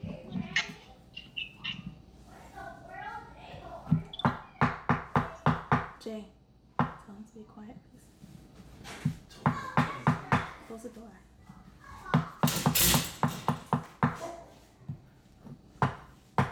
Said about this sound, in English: Okay, so I'm chopping up the cilantro. Here we go. With my handy dandy knives, my brand new knives.